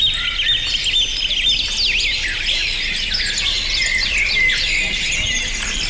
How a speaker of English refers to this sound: And at number one, the most comforting sound. Yeah. Birds tweeting.